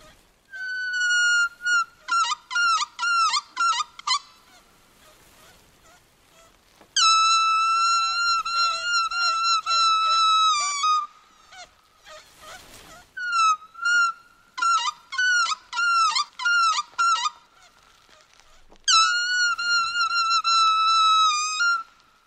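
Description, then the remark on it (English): Ocean-like animal calls imitated with plastic waste found in the ocean, made for a Greenpeace radio commercial: loud, squeaky whistling tones come in bursts, alternating rapid chirping pulses with longer warbling calls and brief pauses between them. “every one of those sounds was made using plastic waste found in the ocean”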